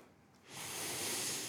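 A person takes one long, steady sniff through the nose, smelling a drink's aroma: a breathy, hissing inhale that starts after a brief quiet moment and holds for about a second.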